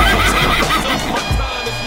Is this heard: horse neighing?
yes